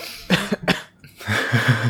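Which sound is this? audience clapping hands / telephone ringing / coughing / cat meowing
coughing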